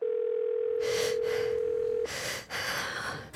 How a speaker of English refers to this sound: The rotary phone in the old farmhouse starts ringing.